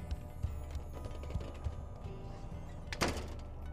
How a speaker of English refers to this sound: I was outside halfway through the sentence with the slam of the screen door and a few loose paint chips lazily floating to the ground behind me.